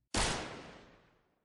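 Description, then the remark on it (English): A single loud gunshot rings out with a sharp, explosive crack, then a long echoing tail that fades away over about a second. No voices are heard. “It was a gunshot. Someone had been shot.”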